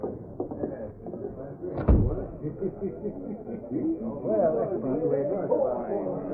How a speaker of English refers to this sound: This looks like an office. It is an office. Jack Hammer's office. Step inside, I'll shut the door.